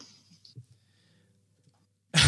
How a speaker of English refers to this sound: I'm trying not to cough.